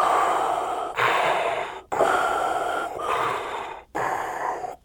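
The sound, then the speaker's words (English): A voice imitates Darth Vader's heavy, mechanical respirator breathing: loud, hissing inhales and exhales in steady cycles of about a second each, separated by brief pauses, with no talking. “And along with Cinnamon Buns, we're also going to be giving away the baddest daddy in the galaxy, Lord Vader himself, breathing noises.”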